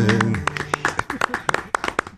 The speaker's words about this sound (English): It'll get a golf clap from us every single time. Every time.